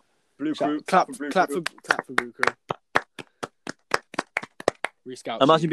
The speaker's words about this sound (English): Blue Crew. Clap for Blue Crew.